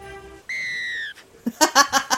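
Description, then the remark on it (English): A person whistles a single steady, piercing high note for about half a second, followed by a quick run of breathy, rhythmic giggles. “I've whistled you.”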